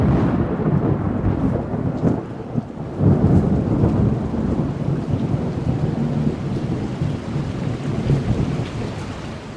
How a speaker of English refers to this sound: What impressed me about this was it's not just rain coming straight down, like you can hear it running off of things, and it sounds kind of nice, and the thunder's really, really thundery.